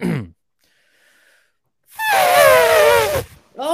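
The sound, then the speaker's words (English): A person's voice imitates an elephant trumpeting: one loud, strained, wavering blast of just over a second that bends slowly downward in pitch, between brief vocal sounds before and after. “I can make an elephant sound, but I don't know if it's great.”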